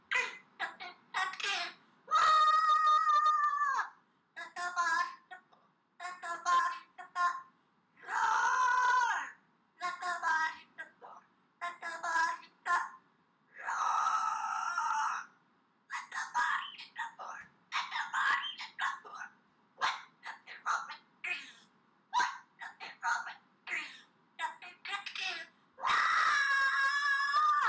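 A parrot belts out a metal song in loud, raspy squawks, short rhythmic bursts broken by several long, strained shrieks, with no people talking over it.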